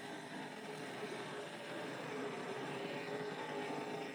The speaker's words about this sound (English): Big battle here, big gaggle of cars coming off turn number two on the back straightaway. 5, 6, 7 cars battling for position deep in the field.